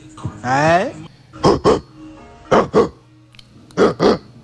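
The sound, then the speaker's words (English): A man's voice imitates a big dog, starting with a drawn-out, rising growl and then giving three evenly spaced pairs of short, gruff woofs, fairly loud. “That's the sound of a fucking big dog.”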